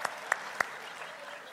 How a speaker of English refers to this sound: Well, it's getting... I'll give myself a hand clap now.